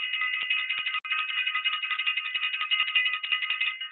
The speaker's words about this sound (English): We're going to ring the bell.